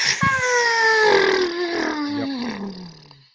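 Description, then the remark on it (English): A voice imitates an untied balloon deflating: one long, whiny tone that slides steadily downward in pitch for about three seconds, loud at first and trailing off at the end. “Yes, this was you had an inflated balloon that was not tied, and you were holding it.”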